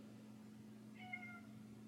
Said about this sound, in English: And my cat is meowing. Hello, kitty. Well, the cat threw me off. Cats. What are you gonna do?